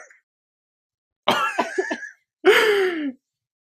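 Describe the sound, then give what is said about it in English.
Two bursts of harsh, raspy coughing from a person whose voice is gone, the first a rough multi-part hack and the second a strained, throaty cough, separated by a short pause. “Bruh, my throat, I keep coughing because like my voice is gone.”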